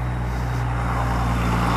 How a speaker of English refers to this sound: Oh my gosh. What is it with people here in Roseburg and their humongous trucks?